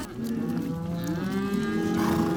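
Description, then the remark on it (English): Cows and calves mooing in long, overlapping low calls, one drawn-out bellow sliding in pitch over a steady outdoor background, continuous with no talking, while being kept from running back down an icy pasture. “hang back to keep the cows and their calves from running all the way back down the pasture, which is really more like a hockey rink.”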